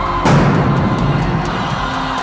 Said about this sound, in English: So here comes the 2012 Arena Bowl champions. Listen for the eruption in the crowd.